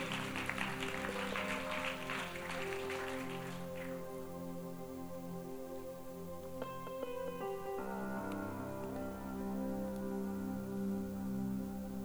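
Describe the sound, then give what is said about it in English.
A church audience claps for about four seconds over soft sustained keyboard chords, then the applause fades and the mellow music carries on alone. “let's give one another a round of applause and let's thank Jesus”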